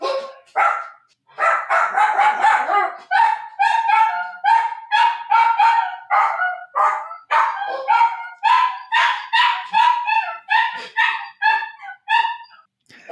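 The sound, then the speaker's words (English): Two dogs bark excitedly and almost without pause, a fast overlapping run of loud yaps and yips with a few whiny, higher-pitched cries mixed in. “See, both these dogs think Cena is coming home, but she's away for the weekend.”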